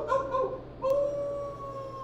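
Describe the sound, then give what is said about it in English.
A wolf howls: a couple of short, wavering opening notes, then one long, steady howl that slowly sinks in pitch. It sounds clear against a quiet background, with no talking. “We've got a little bit of a wolf problem, but it happened only once a month.”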